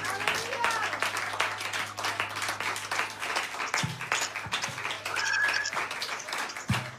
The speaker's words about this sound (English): So if you want to stand, I'll stand with you or clap with you, and we'll clap and honor the Lord for what he did.